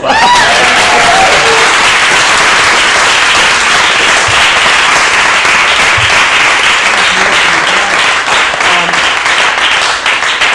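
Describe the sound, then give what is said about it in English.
A crowd applauds steadily, with dense overlapping claps at a loud, even level across the whole stretch and no break in the clapping. “Give him a clap.”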